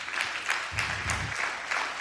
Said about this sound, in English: Will you clap your hands for people like that?